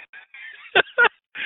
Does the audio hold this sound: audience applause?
no